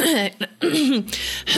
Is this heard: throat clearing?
yes